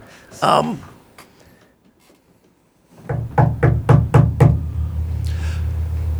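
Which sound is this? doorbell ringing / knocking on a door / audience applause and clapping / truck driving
knocking on a door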